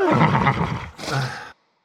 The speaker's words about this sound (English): Is that a horse?